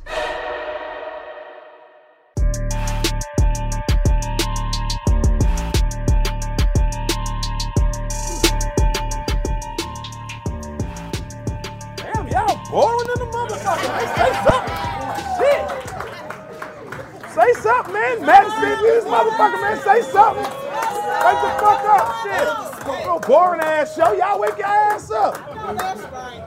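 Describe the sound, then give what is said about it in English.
Live audience crowd noise: a steady murmur of chatter with scattered sharp claps or knocks, swelling into louder, livelier cheering and hubbub in the second half. “I can go outside and find some other motherfuckers to come here and make more noise than that, man.”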